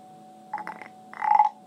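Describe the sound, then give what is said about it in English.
A wooden toad croaker being rubbed, making a short series of raspy ratcheting croaks followed by a longer, louder croak, with no talking. “Okay, that actually, more than a lot of them, actually sounds like a toad.”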